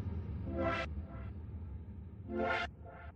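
Two loud, brassy air horn blasts about two seconds apart, each followed by a shorter, quieter honk, over a low background rumble with no talking.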